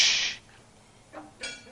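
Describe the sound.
A voice imitates a toilet flush heard over a panel speaker's lapel microphone left on in the bathroom, in a room of about 300 people: a loud, breathy whoosh, followed by two shorter, softer hissing bursts, with no other sound around it.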